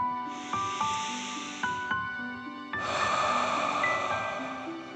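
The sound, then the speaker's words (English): A slow, deep dragon breath in through the nose, filling the chest and belly, followed by a long, airy exhale, both soft and hissy over faint, gentle background music. No one speaks. “Deep breath in and out.”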